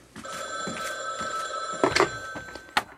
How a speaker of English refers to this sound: Oh, why can't I ignore that phone?